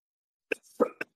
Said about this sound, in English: Sorry, there's like a persistent cough.